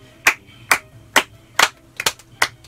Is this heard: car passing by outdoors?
no